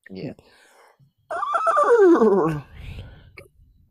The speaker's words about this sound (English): Was it a dolphin noise? No, it was a stallion. Or the Bronco.